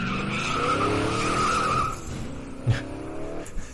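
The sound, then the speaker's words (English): A high-performance car tire skid sound effect: the tires squeal with a sustained, loud screech over engine roar for about two seconds, then the engine drops lower and rumbles on with a brief thump. “You so need more like a high end. I know, a high performance. I've been trying car.”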